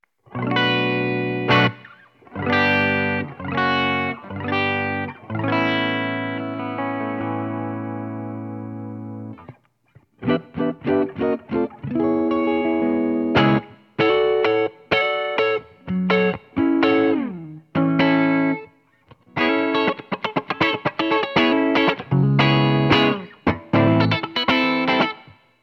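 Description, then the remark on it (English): A dry electric guitar played through an amp, heard only through a mic on the amp with no room sound, clear: strummed chords ringing out, then a run of picked single notes and choppy riffs with short pauses, no voices. “I've got a mic up here above me, so I'm going to turn that off so you don't get any room sound, and you're just going to hear the mic on the amp. So let's listen to the basic tones of the guitar first.”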